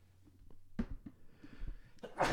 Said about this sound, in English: Bless you. Include that sneeze as well.